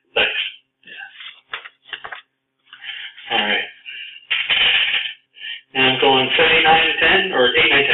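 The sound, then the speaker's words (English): Dice clatter and tap against a hard tabletop in a quick series of sharp clicks and rattles for a weather-predicting roll in a game, followed by a busier stretch where someone talks over more rattling. “Yeah, it is an extra dice.”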